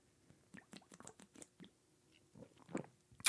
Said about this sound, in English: And I will drink during that time, and then I will toast to you, and then I'll take another sip.